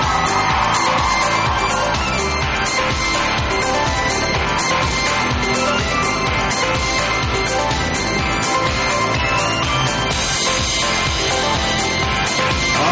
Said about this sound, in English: One more round of applause for all of our cosplay Oregon! Beautiful stuff! Beautiful stuff!